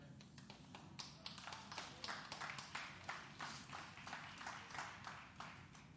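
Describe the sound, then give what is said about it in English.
Scattered, nervous clapping from an audience, a thin patter of irregular claps running steadily for several seconds at a fairly quiet level, with no one speaking over it. “I know that's a nervous clapping.”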